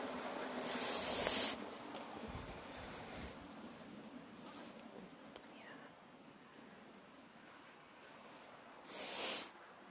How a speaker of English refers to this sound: But I wonder if you can hear the sound of the water here.